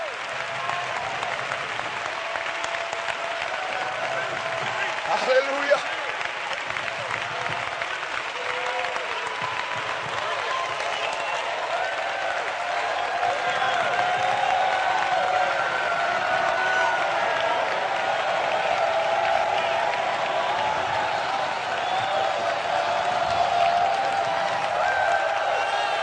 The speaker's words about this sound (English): Oh, let's give the Lord a hand clap tonight. Let's really praise Him.